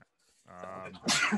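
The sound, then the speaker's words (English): A single loud sneeze: a voiced inhaling build-up followed by a sharp, breathy burst at the end, with no talking around it. “Bless you, buddy. I tried to mute and didn't work.”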